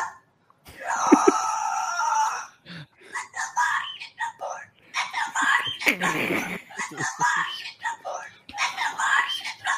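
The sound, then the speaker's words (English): A cockatoo lets out a loud, harsh squawk, then a run of raspy, breathy mutterings and whispery chatter that sound like garbled attempts at speech. “I just bought a cockatoo from a guy on Craigslist, and it keeps on making these noises”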